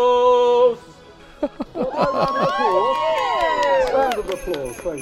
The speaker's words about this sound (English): There is a kinetic floor in front of us right now, in fact two of them, and if people stand on them and stomp, it lights up the forest behind. We've got kids on both of the platforms, a red team and a blue team. The more that they stomp,